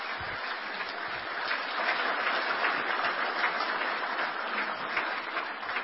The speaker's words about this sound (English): I know we did this early, but if we can all give a round of applause to all the families here because they sacrificed really almost or as much as we do as firefighters. So please give a round of applause to the firefighters.